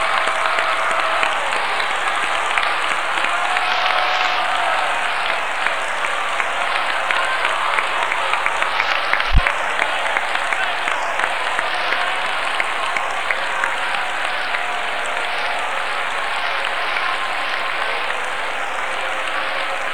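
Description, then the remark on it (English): An audience at a service applauds steadily for about twenty seconds to thank him for coming, a dense, even wash of many hands clapping with no voices standing out, holding at a constant loudness throughout. “Let's thank him for coming with our hands. Clap, would you do it?”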